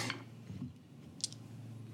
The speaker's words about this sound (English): Rolling a lot of dice back there.